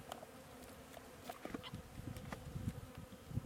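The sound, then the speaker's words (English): Steady buzzing of many honeybees flying around an open hive, with a low hum that swells in the second half and scattered wingbeats darting past, no talking. “I'm not going to spray it now because wet bees are dead bees and they're flying around.”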